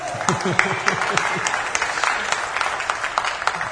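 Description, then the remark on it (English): A crowd breaks into steady applause, many hands clapping in a dense, bright patter that holds at an even level throughout, with a few voices briefly audible underneath at the start. “you can clap for her.”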